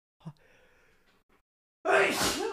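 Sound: sneeze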